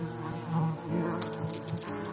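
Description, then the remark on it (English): A steady buzzing of several wasps, droning continuously with slight swells in pitch and loudness as they hover and circle. “In the coming days, that first wasp was joined by another and another.”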